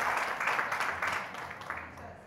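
An audience applauds the organiser of a show for teachers, a dense, steady wash of many hands clapping that holds at an even, moderate level for about two seconds without individual claps standing out.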